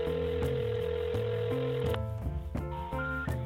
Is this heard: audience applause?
no